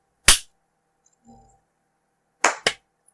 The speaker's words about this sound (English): All right. And actually, clap to sync audio.